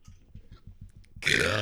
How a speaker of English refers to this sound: Ooh. Nice. Yeah, I moan after I burp now. It's my new thing.